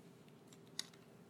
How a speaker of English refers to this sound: Still hear pages turning. I'll give you a second.